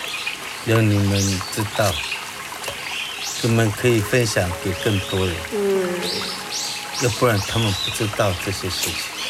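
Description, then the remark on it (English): Steady flowing water on Lanyu runs in the background, a continuous rushing wash beneath a man talking; faint bird calls may drift through. “So why did I bring you to see the water?”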